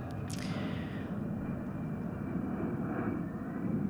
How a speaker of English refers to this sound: And to think about, wait for this plane to go by.